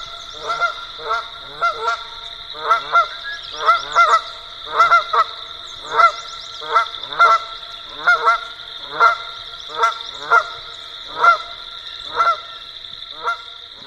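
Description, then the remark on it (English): A series of loud, nasal Canada goose (Branta canadensis) honks repeats in a steady, slightly irregular rhythm, roughly a dozen calls over several seconds, clear with a faint background hiss and no talking. “That's right, Canada geese, Branta canadensis.”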